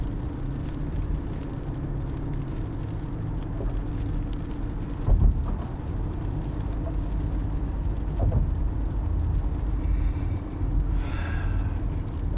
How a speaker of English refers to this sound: This is Girard Point Bridge. Yeah, it's really raining hard.